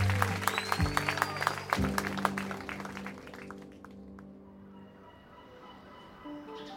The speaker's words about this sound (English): There, she was met by a cheering crowd, including her family.